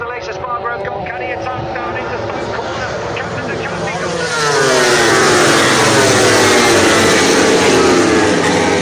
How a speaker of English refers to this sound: I think I can hear the sound of MotoGP bikes approaching. Must be time to talk about MotoGP.